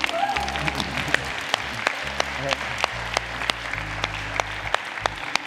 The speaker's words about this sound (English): It's okay to clap for Jesus, it's not about me.